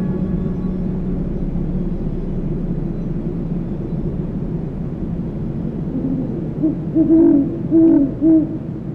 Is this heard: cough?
no